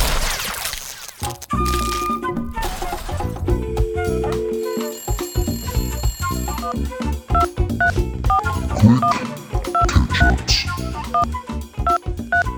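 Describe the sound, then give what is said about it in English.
An outgoing phone call rings, its repeated ring tones sounding over a dense, busy musical background, fairly loud, with no one speaking. “Let's just make some phone calls.”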